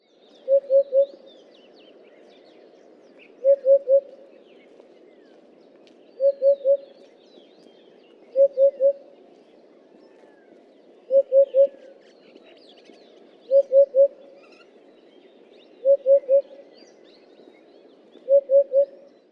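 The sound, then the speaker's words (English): A hoopoe's soft, low hoop-hoop-hoop call, three quick hollow notes repeated every couple of seconds in a steady series, clear with faint background noise. “The call is a distinct hoop-hoop or a hoot-hoot.”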